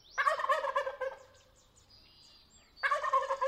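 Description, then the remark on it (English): Two loud, rapid gobbling bursts from wild turkeys at dawn near Patagonia, Arizona, leaving the tall sycamore tree where they roosted overnight, separated by a quieter pause with faint bird calls and a thin tonal whistle in the background. “It's dawn, and the wild turkeys who roosted all night in a tall sycamore tree are heading off to find breakfast and making sure everybody knows about it.”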